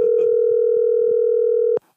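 A phone's ringing tone sounds as one steady, unbroken electronic hum, loud, holding for nearly two seconds before cutting off abruptly, with faint thumps underneath.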